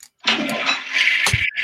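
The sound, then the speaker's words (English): A toilet flushes in a short, loud rush of swirling water that runs steadily for about a second, with a low gurgle near the end before it cuts off. “There it is. I got flushed.”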